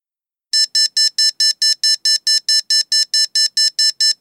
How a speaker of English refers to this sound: What the hell is that? Sounds like an alarm clock.